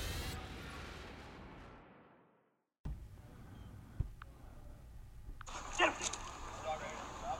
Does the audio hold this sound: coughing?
no